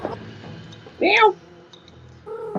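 A person does a single short, loud imitation of a cat's meow, rising and falling in pitch, between quieter stretches of background chatter.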